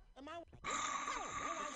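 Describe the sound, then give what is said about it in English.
A voice imitates a loud snore from the character French Toast, off screen: a throaty, groaning intake followed by a long, raspy, whistling exhale, with no other sounds around it. “French Toast begins to snore from off screen.”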